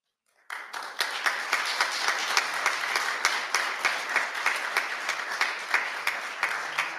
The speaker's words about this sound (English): Let's just thank God from using her one more time. One more hand clap. Come on.